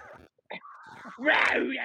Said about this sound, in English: Fucking rabid dog. Yeah. So I guess rabid dog.